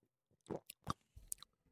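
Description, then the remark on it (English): Someone takes a sip of a dark red sour ale: a few short, wet mouth noises and a quick swallow, quiet and intimate, with no talking. “And okay, I'm gonna take a sip again, but every time I do, I just freak out.”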